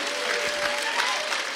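audience applauding

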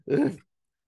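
dog panting

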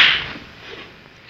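slap across the face

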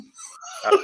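sneeze

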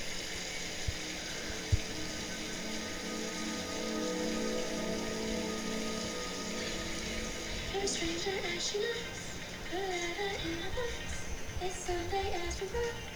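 rain falling

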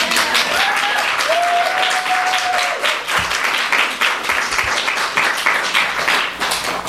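audience clapping

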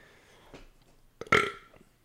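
burp

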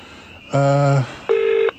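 telephone dialing beeps

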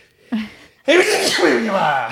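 sneeze

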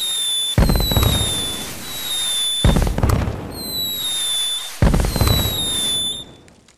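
fireworks bursting

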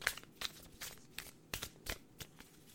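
shuffling tarot cards

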